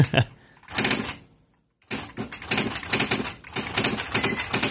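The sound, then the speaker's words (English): Rapid mechanical typewriter keystrokes clatter in bursts, with a short pause before the typing resumes, fairly loud, and a faint bell-like ding near the end. “Okay, so a sound rarely heard, and he types on the typewriter”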